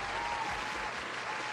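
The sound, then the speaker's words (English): An applause sound effect: a crowd applauds steadily, a dense wash of many hands clapping at once, fairly loud and continuous throughout the brief moment with no voices standing out. “See, there's an applause.”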